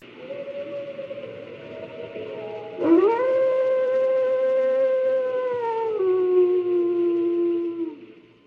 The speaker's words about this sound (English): Cut to the White House and a bunch of wolf howls, then a message from the president.